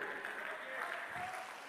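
An audience claps steadily in a dense, continuous wash of applause, filling the room from start to finish at an even, moderately loud level.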